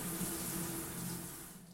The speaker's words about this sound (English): That is a rain bar, so it is a car wash. I mean, so essentially your entire body is being doused in water.